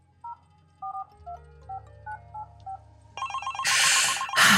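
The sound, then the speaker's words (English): A series of short two-tone telephone keypad beeps dials out at an irregular pace to call a company CEO, followed by a loud, buzzy electronic phone ring that trills in two bursts, clear with no talking. “Let me get the CEO on the phone and we'll helicopter an Italian operator.”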